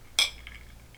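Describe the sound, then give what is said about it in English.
A single bright clink of glasses touching in a toast before tasting an 88-proof bourbon whiskey, fairly loud, with a short high ringing tail that fades over the following half second against quiet background tone. “And so we're going to taste this and let you know how it is. So cheers.”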